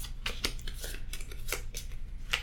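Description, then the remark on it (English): Playing cards from a pack shuffled and dealt out for a game: a handful of crisp, papery snaps and flicks at irregular intervals over a steady low hum, with no voices. “So I'm gonna draw out a pack here and shuffle up the cards, deal them out.”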